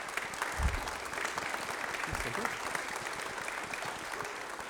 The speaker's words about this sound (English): And you can clap, yeah.